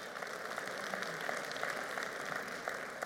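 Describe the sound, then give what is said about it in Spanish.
A crowd claps together in dense, steady applause for the Lord, a bright continuous patter of many hands at an even loudness for the whole stretch, with no voices standing out. “Puede dar un aplauso al Señor que se lo merece.”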